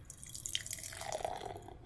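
Amber-colored 5% alcohol beer, brewed in Ogden, Utah, pouring steadily into a glass, a continuous gurgling splash with bright fizzing and dripping over about two seconds, no voices.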